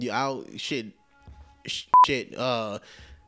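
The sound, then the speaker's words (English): A single short, loud censor bleep from a mixer button, a flat steady tone lasting a fraction of a second, cuts in between stretches of a man talking. “I really need to get used to hitting that button. It's not like I'm trying to be family friendly or some shit like that.”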